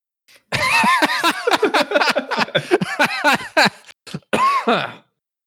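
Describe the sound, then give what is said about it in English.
A loud run of harsh coughing and throat clearing, rapid and repeated for several seconds with brief gaps, ending in a final raspy hack, from a person who inhaled black pepper dumped onto a very hot cast iron pan while cooking taco meat. No speech. “I was cooking some taco meat earlier, and I dumped a bunch of black pepper onto a very hot cast iron and just inhaled it, and I have been coughing for like 4 hours.”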